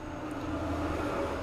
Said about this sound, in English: Ignore that truck that just drove by. It's going to be loud this episode.